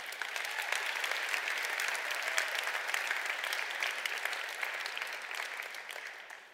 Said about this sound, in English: It's a good place to give God a good hand clap offering.